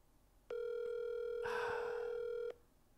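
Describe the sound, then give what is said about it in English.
An outgoing phone call's ringing tone: one steady, buzzy, mid-pitched tone lasting about two seconds, with a rush of hissy noise joining it halfway through, then silence. “I hope he doesn't pick up with some wild shit.”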